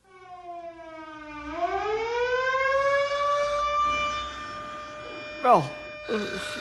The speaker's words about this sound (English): for land's sakes, what's that terrible siren wailing about? Is it an air raid?